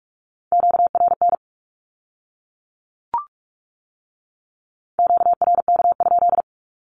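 Rapid Morse code beeps sending a Q-code at 45 words per minute on a steady single tone, two short bursts of dots and dashes separated by a pause with a brief click between them, crisp with no voices.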